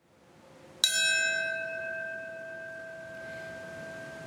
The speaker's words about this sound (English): In New York, a solemn bell tolled in a moment of silence at 9:03. The moment Flight 175 struck the World Trade Center's South Tower on September 11, 2001.